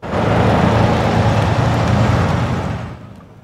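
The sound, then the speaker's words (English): Heavy traffic on the snowy Coquihalla highway near Merritt rumbles steadily while dozens of semis, buses and other vehicles wait for the highway to be cleared of spun-out vehicles, with deep engine drone and a broad roadway hiss that eases off toward the end. No one speaks. “Dozens of semis, buses, and other vehicles were forced to sit and wait while the highway was cleared of spun-out vehicles.”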